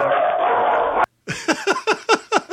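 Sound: dog barking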